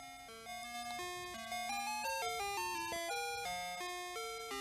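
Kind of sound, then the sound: vehicle, ice cream truck music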